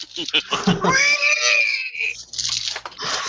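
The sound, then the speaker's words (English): A person vocally imitates a fierce, demonic war cry of a woman leaning out of a car's passenger window and slapping the passenger door: a loud, shrill, strained screech held for about a second, rough and pig-like, with short guttural vocal bursts before and after. “She's leaning out with her elbow hanging out, and she like slaps the passenger door and lets out a terrifying demonic war cry.”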